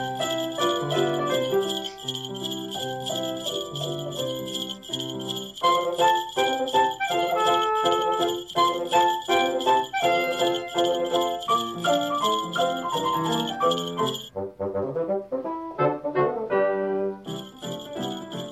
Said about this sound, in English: I don't know if you got the sound for that, but what I've done is add jingle bells to either the engine.